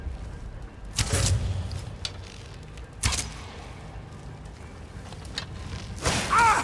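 Video game arrows tipped with weak poison, aimed at an enemy, fly off with quick whooshing swishes, each ending in a dull thud of impact, coming three times at uneven intervals over a low background hum.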